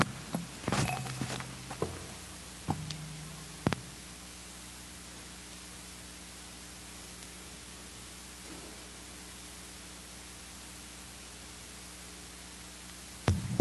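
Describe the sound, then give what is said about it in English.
A steady low electrical hum from an audio system drones under a bed of hiss for the whole stretch, with a few sharp clicks and bumps near the start and no one talking. “Am I the only one who's hearing a hum?”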